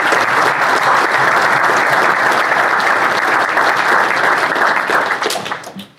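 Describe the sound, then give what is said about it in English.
A crowd at an event applauds a speaker, steadily for about five seconds, a dense, loud wash of many hands clapping together, then it thins out and fades quickly at the end. “So if we could give him a round of applause as well.”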